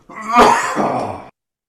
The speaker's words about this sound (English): I think that was me coughing. Excuse me.